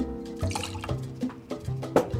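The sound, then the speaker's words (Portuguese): Water pours into a cup in a few short splashy bursts, with bright trickling and dripping sounds and no voices, as a dose of water is measured into the glass for the alcohol-free version of a cocktail. “E na versão sem álcool, uma dose de água para bater a quantidade no nosso copo.”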